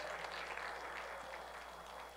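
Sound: audience clapping in praise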